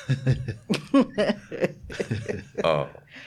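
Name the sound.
throat clearing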